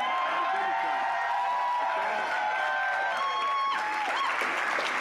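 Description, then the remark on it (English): A large crowd roars with sustained cheering, yelling and applause, a dense continuous wash of voices with a few higher-pitched shouts and whoops rising above it throughout. “What are they yelling about? What are they screaming about?”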